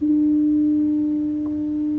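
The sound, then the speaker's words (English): A loud, steady foghorn blast drones on a single low pitch for the full two seconds, with no break and no voices. “When the foghorn sounds, it's in a time when you're of limited visibility, and it is a situation where you're heading into danger.”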